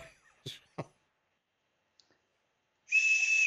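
A loud, steady whistle tone with a hissy, breathy edge sounds near the end, held flat for about half a second, after a few brief vocal noises and a pause of silence.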